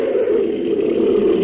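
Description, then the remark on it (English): A person imitates an animal's snarl, a steady, loud, growling rasp held for about a second and a half without break, with a harsh buzzing midrange tone. “The snarling I did myself. Like this.”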